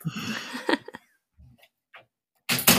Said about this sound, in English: No, that's, hold on for a second. I just got to close my door.